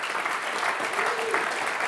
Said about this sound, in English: Francis, please come up and let's give Francis a round of applause.